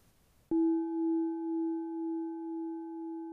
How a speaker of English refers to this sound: I'll start with this gong and I'll finish with the gong so we know where we are, and make little comments throughout the meditation just to keep us all on track.